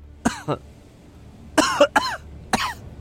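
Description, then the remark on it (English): A man coughs in several harsh, rasping bursts, first a quick pair, then a tight cluster of three, then one more after a pause, fairly loud, as the smell of damp and mold spills out of a rotten, abandoned house. “Roger coughs as the smell of damp and mold spills out of the rotten place.”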